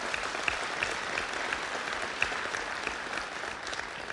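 An audience claps steadily for about four seconds, a dense, even wash of many hands with occasional sharper individual claps standing out, no voices audible.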